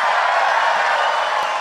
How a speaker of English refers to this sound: emerging from the depths to a triumphant round of applause.